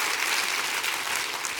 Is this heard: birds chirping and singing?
no